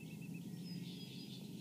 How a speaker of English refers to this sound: I mean, just hearing these birds this morning.